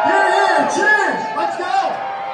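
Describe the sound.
A crowd at the Bullpen bar cheers and shouts together, raising glasses and bottles to celebrate the Commanders' new era under Josh Harris, many overlapping voices whooping and calling out in a loud, steady roar that tapers slightly toward the end.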